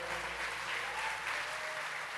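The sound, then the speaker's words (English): A crowd claps their hands to the Lord steadily, dense overlapping handclaps forming a continuous wash of applause that stays fairly even and moderately loud throughout. “Clap our hands to the Lord.”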